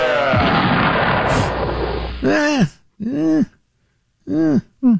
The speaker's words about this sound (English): Meanwhile, back at the West Coast bum explosion. The West Coast. Yeah. Oh, I forgot we had that. Yeah. That seems a little over the top. It's of questionable taste. Let's hear it again. The West Coast bum explosion.